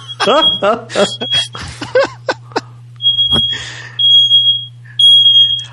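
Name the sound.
smoke alarm beeping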